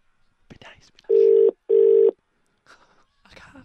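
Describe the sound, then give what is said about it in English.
A telephone ringback tone while phoning a man at a guessed number sounds as one clear, loud double ring, two steady buzzing pulses in quick succession, with brief murmured speech just before and after. “Here we are, ringing him now. Call.”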